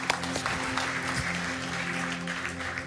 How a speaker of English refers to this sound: Can we give a round of applause to all those that prayed that prayer today? Thank you, Lord. We praise your name.